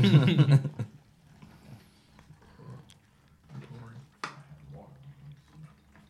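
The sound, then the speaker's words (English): A loud, sudden splash of cold water bursts at the start, then fades into quieter sounds with muffled voices murmuring and a brief sharp outburst later on. “Something about cold water that pierces your soul.”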